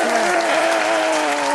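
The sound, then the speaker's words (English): Loud, dense applause from a studio audience welcoming a guest on a show, a steady wash of many hands clapping at once, with a sustained cheering voice riding over it for the whole stretch. “Can we get a clap from the studio audience here?”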